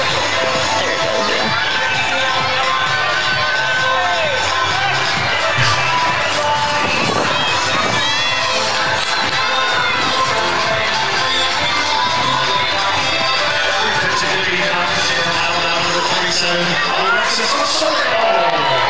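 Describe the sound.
A large stadium crowd at a college softball game roars steadily throughout, a dense wall of cheering voices with scattered shouts and whoops rising out of the din, loud and unbroken from start to finish.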